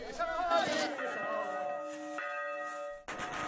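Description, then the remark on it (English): Church bells ring on Christmas Eve among Tibetan Catholics, signalling the start of midnight mass: a series of overlapping strikes, each leaving a long, shimmering hum that rolls into the next, fairly loud with no one speaking. “The ringing of bells and the explosion of firecrackers signifies the start of midnight mass.”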